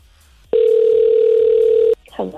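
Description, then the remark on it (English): A single loud, steady ringback tone from a radio station's outgoing phone call to a listener lasts about a second and a half, then cuts off as a voice starts speaking over faint background noise. “Okay, I'll do one more ring.”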